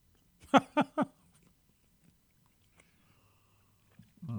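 Chewing of a bagel near a microphone: three quick, loud, moist chomps in a row, then near silence before a low voice starts at the very end.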